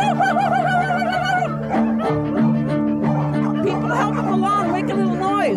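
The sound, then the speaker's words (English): A large chorus of small, medium and big dogs barks, yips and howls all at once, a loud, continuous, overlapping din of rising and falling wails with sharp barks mixed throughout, busy. “And for 5 minutes, these dogs barked and howled and yelled.”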